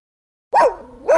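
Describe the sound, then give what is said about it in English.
A dog barks twice, loud, after a brief silence: a sharp, tonal bark followed by a trailing whine, then a second bark about half a second later. “You hear that? Your dog knows.”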